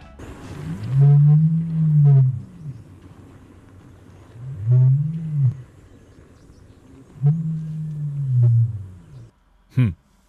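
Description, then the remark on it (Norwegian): A male ostrich booms three times, deep, resonant low roars, each swelling and fading over a couple of seconds with pauses between, followed by a short sharp thump at the end. “Kanskje det mest oppsiktsvekkende med strutsen er at hannstrutsen kan brøle, omtrent som en løve.”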